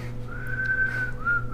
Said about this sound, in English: I haven't whistled in a while.